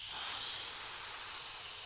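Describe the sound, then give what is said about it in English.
A steady, airy hiss of breath drawn in through the mouth through an inhaler device while its button is pressed runs unbroken for about two seconds. It is soft and fairly even, with no voices. “And then inhale through your mouth and exhale through your nose whilst depressing the button.”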